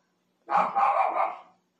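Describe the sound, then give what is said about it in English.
A loud burst of barking from dogs at about 2 o'clock in the morning, lasting about a second, the barks running together with a rough, raspy edge, then stopping abruptly into silence. “I will judge my dogs though for being too loud.”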